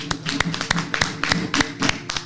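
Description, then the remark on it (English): A group claps their hands together in a quick, steady burst of praise for Dr. Milana Karenga, creator of the Nguzo Saba Seven Principles. The sharp overlapping claps fill the short moment with no one speaking. “Let's give a hand clap of praise for that.”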